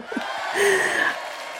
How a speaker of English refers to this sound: And on this podcast, I have to say we're very much in celebration mode, because this very episode marks our 400th show since we started the podcast back in September 2015. I'm going to get JJ to put in a big cheer there.